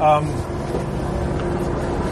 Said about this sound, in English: oh, there's a helicopter right over us. I hope everybody can hear that.